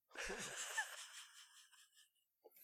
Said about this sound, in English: you're taking a moment to breathe.